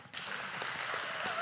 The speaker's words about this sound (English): Give God a hand clap.